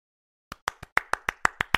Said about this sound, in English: I might add some applause sound effects in post.